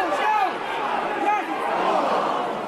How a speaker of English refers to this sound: On Valentine's Day, I find myself in the crowd in Cusick Park as Clare beat Offaly in the first match of the National Hurling League.